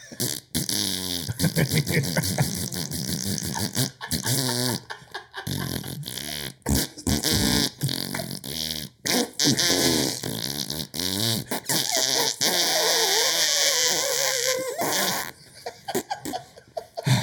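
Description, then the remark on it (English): Someone buzzes their lips to imitate a brassy movie fanfare, the raspy tones rising and falling for several seconds while others laugh loudly nearby. “It'd probably be easier to fart the 20th Century Fox theme.”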